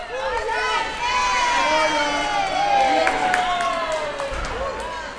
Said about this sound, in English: The cheering and amount of support for competitors, regardless of team affiliation, was overwhelming. And no one cheers louder for these athletes than their parents, eagerly waiting for them on the opposite end of the pool.